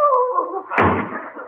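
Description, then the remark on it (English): A door slams shut hard with a single loud bang that rings out and slowly fades, preceded by a brief warbling, tonal sound. “slammed the door too hard.”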